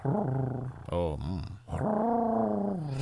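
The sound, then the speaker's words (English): A person imitates the dog Digby growling at New Year's Eve midnight fireworks, producing a few loud, rumbling growls with rising and falling pitch, separated by a brief pause. “Digby, he growls. This is the Digby growl at it.”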